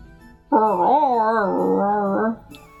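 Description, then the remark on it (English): A person makes a single drawn-out dog imitation, a loud, wavering howl-like bark lasting nearly two seconds, followed by quiet. “I barked.”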